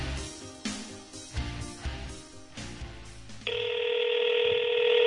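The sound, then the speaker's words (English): A phone call being placed: a few seconds of busy, rhythmic electronic sound give way to a loud, steady ringing tone that holds to the end. No one speaks. “It's ringing.”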